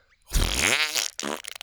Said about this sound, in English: She didn't seem too bothered by them until Toot let one rip, and the Pteranodon stepped back appalled.